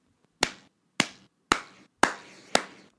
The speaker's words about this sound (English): She deserves so a slow clap for that.